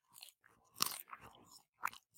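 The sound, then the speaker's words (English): Loud crunching and chewing right into the microphone, with a handful of sharp, crackly bites and wet mouth sounds over about two seconds, no talking. “All the crunching and chewing. Actually, can you chew right into the microphone, please?”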